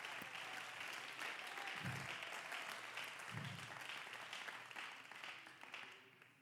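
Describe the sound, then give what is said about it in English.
An audience claps their hands in praise to the Lord, a dense, steady wash of applause from many people, with a couple of low thumps partway through. “Come on, clap your hands to the Lord and give him praise.”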